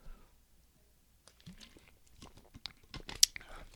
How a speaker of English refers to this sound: And sorry, I need another sip.